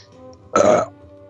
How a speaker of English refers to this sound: what a crappy burp. Classy podcast.